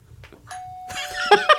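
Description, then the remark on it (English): A doorbell rings, its tone sustained and ringing over a busy, clattering background, with two sharper, louder chimes striking in quick succession at the end. “Someone must be at the door.”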